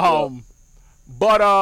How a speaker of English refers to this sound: that's not a sound effect. Those are actual crickets. And even they stopped because they said, I'm out. We're out. Even they didn't want to listen to our shit.